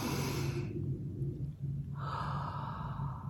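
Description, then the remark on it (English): A slow, deep diaphragmatic belly-breathing exercise: a long airy breath in through the nose into the belly, a brief quiet pause, then another drawn-out breath out through the nose or mouth, with no talking. “This is called diaphragmic breathing.”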